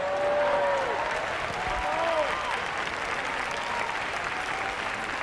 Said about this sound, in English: See, you can't even clap. You too tired to clap.